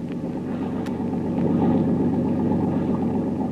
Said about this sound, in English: Listen, Tuan. Another motorboat maybe follow us. I hear it.